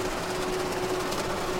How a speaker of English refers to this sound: It's Mississippi Barge. It's a barge going up and down the Mississippi. And the Mississippi River is absolutely full of these barges, and we pay no attention to them.